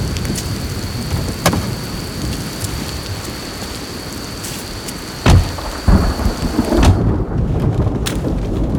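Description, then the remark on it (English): Steady rain pours down with a dense, hissing wash in Barrett County, Virginia, broken by a few sharp thunder cracks and low rumbles that stand out loud. No one speaks. “Let's get out of the rain.”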